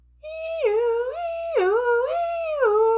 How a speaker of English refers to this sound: Sound of siren.